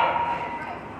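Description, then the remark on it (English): A dog barks harshly, one loud, rough bark that trails off over about a second, with no other sounds around it. “That dog needs anger management.”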